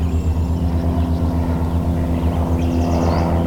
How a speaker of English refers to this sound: We are just over a mile and a half from the airport, which likely explains the airplane noises in the background.